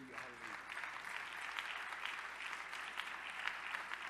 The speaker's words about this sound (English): So somebody clap your hands unto the Lord.